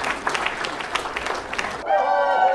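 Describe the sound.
An audience at a live event applauds Voice America and its team in a dense, crackling burst of clapping lasting under two seconds, then it cuts off abruptly as a steady, tonal voice-like sound takes over.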